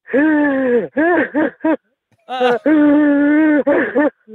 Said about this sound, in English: Wow. A 1-to-3 ratio there of breathing in and out.